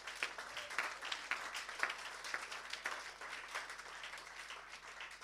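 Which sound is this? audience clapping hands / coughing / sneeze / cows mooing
audience clapping hands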